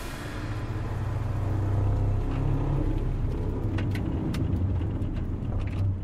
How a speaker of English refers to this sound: Alberto speeds up and hits the brakes shortly after. So they slide forward